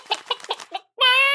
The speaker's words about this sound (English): Whoa, this place isn't really chicken-proof.